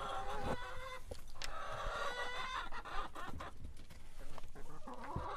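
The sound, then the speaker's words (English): Many chickens cluck and squawk in a busy, overlapping chorus inside a chicken coop in the small hills off Route 550 in Athens, with scattered sharp calls and a steady rustling background. “It's hardly the first time Sierra has been in a chicken coop.”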